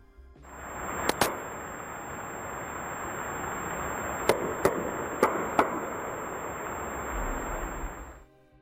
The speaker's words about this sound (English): Mysterious knocking sounds heard beneath the Atlantic Ocean that gave false hope to the Titan submersible